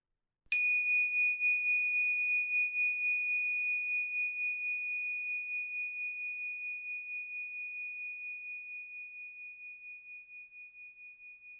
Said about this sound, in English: You will hear the sound of a bell in a moment. And follow that sound until it fades out completely.